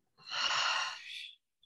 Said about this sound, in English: Take a deep breath into your belly, filling yourself up. Exhale out your mouth.